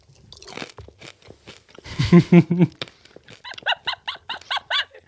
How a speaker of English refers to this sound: Let's turn the volume up and smack some gum.